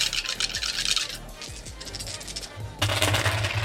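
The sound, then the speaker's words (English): Pool dice rattle and clatter across a hard surface in dense, rapid bursts, easing briefly mid-way before a louder burst of rattling at the end, with a faint low murmur of voices underneath. “I'm gonna use 2 dice.”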